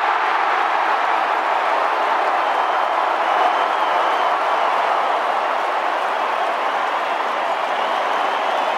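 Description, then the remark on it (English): A huge stadium crowd at Optus Stadium roars continuously as the final siren sounds on an AFL Friday night football match won by the Eagles, a dense wall of cheering and applause that holds steady at full volume for the whole stretch, with no clear voices standing out. “Get a listen in a moment to the crowd once this final siren goes, because the Eagles will win.”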